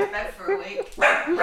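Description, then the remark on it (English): A dog named Turtle barks a few times in quick, sharp bursts, with people talking over and around the barking. “Oh, God, turtle's barking.”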